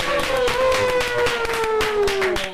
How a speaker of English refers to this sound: Also, I think Chidge deserves a round of applause for doing the show. So, round of applause for Chidge.